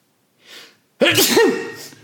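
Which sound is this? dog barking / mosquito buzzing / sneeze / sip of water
sneeze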